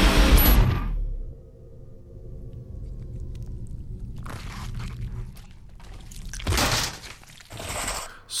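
A circular saw shrieks loudly through a cut at the start, then winds down to a low droning hum, broken by a few shorter harsh bursts of cutting noise.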